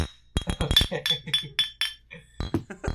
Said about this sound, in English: Okay. We're on. With the Hoppy Boys, the clink of the bottles and the flick of the cans.